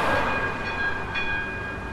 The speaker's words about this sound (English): the tram down Sydney Road, and there were a few people on the tram who looked like they were going to the footy